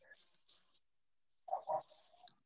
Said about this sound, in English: I hear you're not alone, because I hear you. Yeah. I can hear your dog in the background.